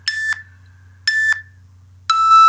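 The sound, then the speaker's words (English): Three evenly spaced electronic timer beeps marking a one-minute answer time limit, each a bright, steady tone about a third of a second long, sounding alone over a faint low hum, with the last tone higher and held longer. “And you get little beeps to guide you through.”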